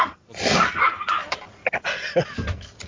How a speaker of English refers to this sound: It's just dog wrestling. No, that's not me. Somebody fighting a gremlin? Yeah. You know, the funny thing is that was my wife taking our dogs outside, and they always have to make a show of it on the way out the door.